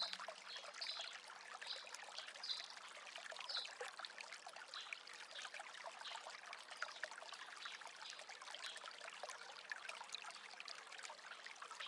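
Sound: bubbling brook water flowing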